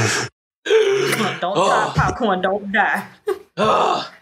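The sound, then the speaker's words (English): A harsh coughing fit after hitting a vape pen too hard: several rough bursts broken up by strained, groaning gasps for breath, loud and ragged over about four seconds. “It wasn't a laugh, it was a hard cough, like, oh God.”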